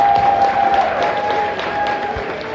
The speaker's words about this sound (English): Give her a round of applause, well done.